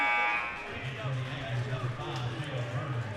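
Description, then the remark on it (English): A loud electronic substitution buzzer blares in a gym during a basketball game, then cuts out, leaving echoing arena noise with a steady low hum and people talking in the background. “Man, we got a lot of buzzers going on in this gym tonight.”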